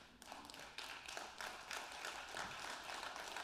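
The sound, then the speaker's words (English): A crowd claps steadily for a few seconds, a dense, even patter of many hands with no voices over it. “You can clap for that.”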